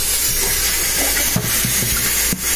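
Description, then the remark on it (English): Water rushes steadily into a blender jar as it is rinsed out, a continuous hissing splash broken by a couple of brief knocks against the container. “And it just rinses out pretty good.”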